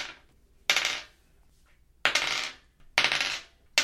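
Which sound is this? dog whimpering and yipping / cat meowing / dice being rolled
dice being rolled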